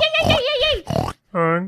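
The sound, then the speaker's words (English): Someone imitates a pig, letting out a loud, wavering high squeal and a rough snorting burst, then after a brief pause one more shorter, nasal squeal. “Why don't we kick down the door and squeal like pigs?”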